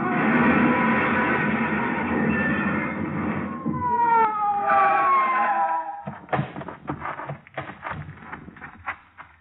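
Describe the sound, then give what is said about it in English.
A police car siren wails in rising and falling sweeps over loud, rushing engine and road noise as the police car chases another car along a curving road, followed by a scatter of sharp knocks and clatters. “Whoever it was paid no attention to our siren, but we pulled closer, hugging the curves by using the whole road.”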